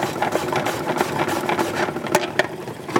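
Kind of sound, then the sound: household object, salad spinner spinning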